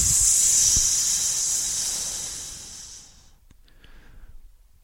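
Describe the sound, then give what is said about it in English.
A person voicing a snake named Seth makes a long, steady snake-like hiss, loud, holding for about three seconds before tapering off into near silence. No words are spoken. “I am Seth the Snake.”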